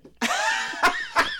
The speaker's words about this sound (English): You coughed and then just, like, hung your head to die. I gave up right away.